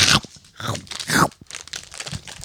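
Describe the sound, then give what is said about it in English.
Crisp, loud crunches from biting into a thin puffed rice cake with apricot yogurt glaze: three sharp bites about half a second apart, followed by softer, quicker crunching as it's chewed. “Next is puffed rice cake with apricot yogurt.”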